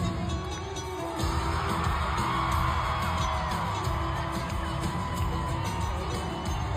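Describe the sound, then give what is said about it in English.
A large crowd cheers and whoops continuously for a singer, a dense, loud roar of many voices with scattered yells rising over it throughout. “Like cheering though, everyone's like, oh.”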